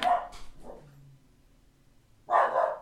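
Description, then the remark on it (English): A dog named Bali barks a few times, a short cluster of sharp barks followed by a quiet pause, then another loud bark burst near the end. “Jesus Christ, Bali's barking.”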